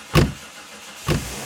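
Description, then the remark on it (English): Two heavy truck doors slam shut about a second apart, each a loud thud over a faint low background hum; no engine noise of the vehicle driving off is audible. “The doors to the truck slammed, and Ethan found himself holding the brown bag.”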